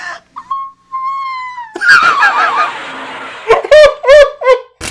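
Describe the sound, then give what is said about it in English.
A woman in a film attempting to scream on noticing a caveman: a feeble, thin, wavering high-pitched note, then a raspy, breathy stretch, ending in several choppy squeaky yelps that sound almost like a gobble. “And then she's going to attempt to scream, and just listen to what comes out of her mouth.”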